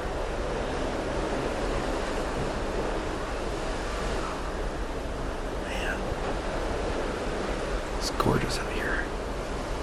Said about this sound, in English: As far as you can see, it's just an ocean. It's just amazing.